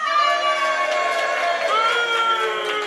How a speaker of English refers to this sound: Well, look, should we have a little, a cheer for each one?